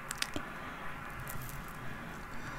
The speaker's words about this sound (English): Yeah, I can't really sleep either. I usually sleep pretty good to the rain, but I guess it's just because we're in a new place.